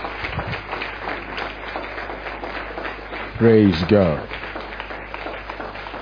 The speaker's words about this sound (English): Keep clapping as he goes. Keep clapping as he goes. Keep clapping as he goes. Keep clapping as he goes. Hallelujah. Hallelujah. Keep clapping, keep clapping.